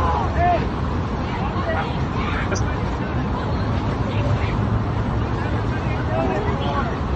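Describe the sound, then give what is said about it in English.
A dense crowd of many voices crying out over a steady, rushing wash of water and wind as a ship sinks with people swimming in the water, continuous and fairly loud throughout with no pauses. “Yeah, let's put the Titanic.”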